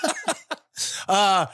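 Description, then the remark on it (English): A quick run of loud coughs: three short hacking bursts, then a rougher, longer cough ending in a drawn-out, voiced, almost groaning hack. “My coughs sound like oil companies.”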